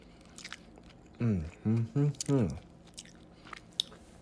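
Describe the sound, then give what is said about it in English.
Chewing of crunchy bacon that is not maplewood smoked, with soft crackly bites scattered throughout. Partway through, a voice makes a few short voiced sounds over the chewing. “All right, as I started chewing more, it got a little better.”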